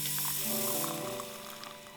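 Hot water pours steadily from a badger-shaped teapot, its spout in the badger's nose, into a cup, a bright trickling splash with a slight rising tone as the cup fills, no voices over it.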